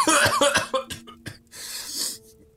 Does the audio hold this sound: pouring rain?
no